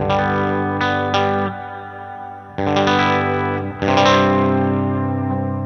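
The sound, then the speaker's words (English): Electric guitar chords played through an MXR M300 reverb pedal, drenched in lush, spacey reverb, with several strummed attacks that ring out and wash into long shimmering tails; loud, no talking. “I love this, I think it's the M300 reverb pedal.”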